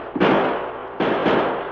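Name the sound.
gunshot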